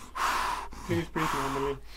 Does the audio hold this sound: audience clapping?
no